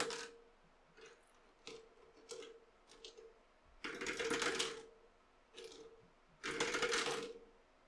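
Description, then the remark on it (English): Dice clatter and rattle across a hard table in another room in several quick bursts, a few longer rolling rattles among shorter clicks, fairly quiet over a steady low hum, with no one speaking. “I hear a lot of dice rolling from the other room.”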